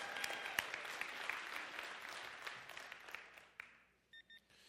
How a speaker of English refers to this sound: Boy, I should have got a clap from all the consistent volunteers right there.